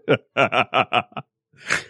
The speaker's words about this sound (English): Oh, sorry. I couldn't resist. Like, I haven't used this snoring sound effect yet. Let's throw this bad boy in there.